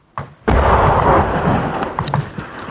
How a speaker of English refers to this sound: More incoming gunfire from Argentine batteries around Stanley, keeping everybody's heads down. Somebody's been hit up a front. Good heavens. Everything now landing far too close for comfort.